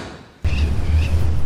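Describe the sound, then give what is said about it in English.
After a brief hush, a front door bursts open with an abrupt, loud onset, giving way at once to a steady, full wash of low rumbling sound that carries on to the end. “Just then, the front door burst open.”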